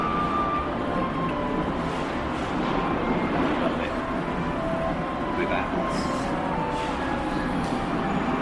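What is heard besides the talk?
train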